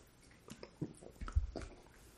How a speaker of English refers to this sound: so, per their advertisement, it's all the fun of a margarita with half the calories. So, it's a weird cross between the two. I'm going to have a sip right now.